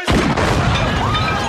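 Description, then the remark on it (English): A loud Cobra assault cannon blast, fired by Clarence, hits at once and rolls straight into a sustained, roaring explosion as Joey's new car blows up, with heavy rumble and crackling debris filling the rest of the moment. “And he pulls out a big, big gun and aims it at Joey's new car and blows it up.”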